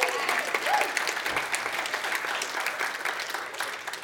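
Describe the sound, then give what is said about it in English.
Steady applause from a small crowd for the speaker's daughter, who carried sausages to him, dense clapping spread evenly across the whole stretch at a moderate level, with no voices rising above it. “So big round of applause for my daughter.”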